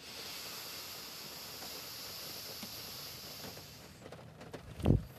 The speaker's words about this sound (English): Pausing at the top just for a moment while those raindrops are coming down, giving us that loving feeling of life and restoration.